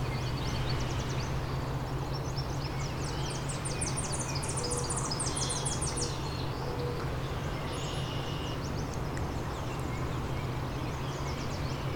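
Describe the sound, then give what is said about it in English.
A Tennessee warbler sings bright, rapid staccato trills, switching somewhat hurriedly between its three different paces, high-pitched, over a steady low hum and background field ambience. No one speaks. “Tennessee warbler kind of has three different paces to its warbles.”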